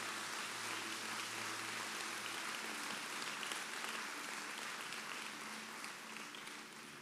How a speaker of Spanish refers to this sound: ¿Pueden dar una fuerte aplauso al Señor por su bondad?